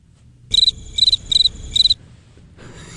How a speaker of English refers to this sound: The old crickets. There you go.